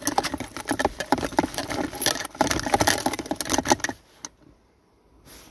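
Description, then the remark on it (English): Busy scratching and rustling in the back of a car for about four seconds, dense rapid patter like small claws or paper being disturbed, then it abruptly stops into near silence with a brief faint scrape. “I heard something rustling around in the back.”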